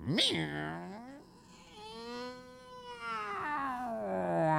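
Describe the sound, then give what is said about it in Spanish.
A person vocally mimics an angry cat, producing a rising yowl followed by a long, wavering drawn-out growl-like meow, loud with strong harmonic tones, with no other talking. “Y cuando tú ves al gato que hace...”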